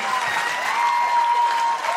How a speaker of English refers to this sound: You guys, round of applause to you guys.